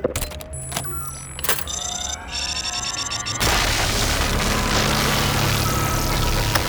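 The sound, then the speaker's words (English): A lowered laser drill cutting through a ship's hull: electronic whines and rising tones build, then break halfway into a loud, steady roaring hiss that holds to the end, with no voices. “The laser drill has been lowered. Now we're talking. Slice away.”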